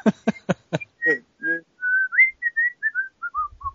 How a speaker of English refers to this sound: See, the problem is I can't whistle while I'm also laughing.